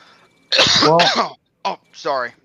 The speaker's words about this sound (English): I was trying to keep that cough in, but then all of a sudden, you know.